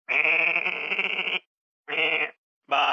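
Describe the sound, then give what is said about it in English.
Sheep bleat loudly, one long wavering bleat followed by two shorter ones with brief pauses between, and no voices present. “Once upon a time, there was a dream team of sheep.”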